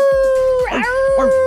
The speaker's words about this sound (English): This podcast intro recorded live at the local dog kennels.